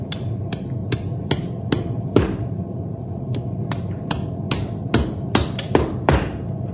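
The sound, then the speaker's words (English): Someone hammers a horseshoe onto the hoof of a horse named Storm: a dozen or more sharp, ringing metallic taps at an uneven, steady working pace over a low background rumble, with no talking. “I'll rasp his hoof smooth to the shoe, and he can run to his heart's content.”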